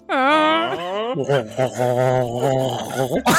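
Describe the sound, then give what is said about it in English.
A person imitates an elk call with a loud voice: a high, squealing tone that slides upward for about a second, then a lower, wavering, throaty warble that trails off. “What sound do elk make?”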